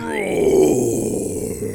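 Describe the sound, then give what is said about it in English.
A man's voice lets out one long, growling roar in imitation of a bear as a hello, loud and steady for nearly two seconds with a rough, low, guttural texture. “I just wanted to roar my hello. I appreciate it. Like a bear.”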